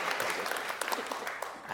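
A crowd claps steadily, a dense wash of overlapping handclaps at an even, sustained level with no voices standing out.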